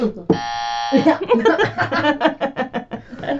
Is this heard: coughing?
no